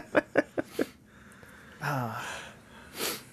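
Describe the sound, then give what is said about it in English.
Four quick, sharp sniffs in a rapid rhythm by someone trying not to sneeze, sniffing away from the microphone, followed by a short voiced groan-like sound and then a soft, breathy exhale. No speech. “I'm sniffing into the mic here.”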